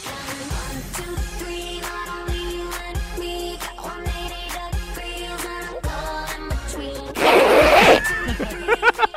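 A single quick, raspy zipper pull, a reenactment of a zip going up, cuts loudly through steady background music, lasting under a second before the music carries on.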